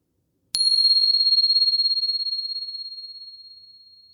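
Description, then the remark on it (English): A single meditation bell is struck once, producing a bright, high ring that lingers and slowly fades with a gentle wavering shimmer, heard alone in silence. “Here comes the bell.”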